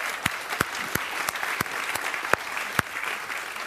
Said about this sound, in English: I want to say miracle, that God has blessed us with a little baby that is coming into our lives. Yeah, you can applaud.